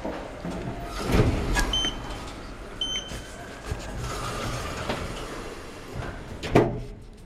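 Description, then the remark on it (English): An elevator's sliding doors rumble open with a soft chime-like tone, then later thump shut, with faint indoor ambience between the two movements and no one speaking. “I thought we'd stand here all weekend long and stare at the closed elevator doors. Just get in the elevator, please.”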